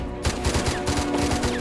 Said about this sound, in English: I assume that must be CGI gunfire, because even blanked would be a bit risky.